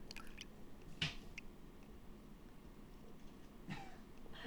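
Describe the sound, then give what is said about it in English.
A few sparse, faint drips of urine from a woman peeing land at uneven intervals over a quiet background, with one slightly louder wet splash near the start and another later. “Your pee faces are fucking phenomenal.”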